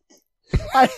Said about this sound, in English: I hiccuped up and coughed at the same time.